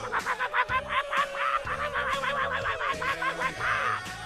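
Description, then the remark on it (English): A duck call is blown in Pittsburgh in a rapid series of raspy, nasal quacks. The short bursts come in a steady rhythm, fairly loud, over a low background hum, celebrating a Pittsburgh Steelers victory. “It's Pittsburgh, and we duck call over here.”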